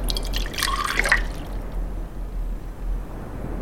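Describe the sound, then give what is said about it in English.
A liquid mix of two parts saline to one part water splashes and pours into a container for about a second, with a few drips, then gives way to a low steady background hum. No one speaks. “It was two parts saline, one part water. Trial number one.”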